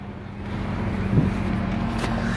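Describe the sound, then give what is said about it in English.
Steady low rumble of two trailer trucks on a street, one backing up and the other stopped in front, engines idling and moving with a constant droning hum and a brief louder surge midway. “There's two trailer trucks. One of them's backing up and the other one stopped in front, so no cars can go around.”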